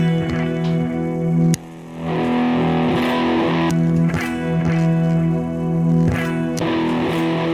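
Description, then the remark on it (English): A loud, sustained electric guitar with a thick, distorted tone, played through an AB box that switches between direct signal and the amp; the sound briefly dips and changes character as it is switched. No one speaks. “So with the AB box, I can switch in between direct and the amp.”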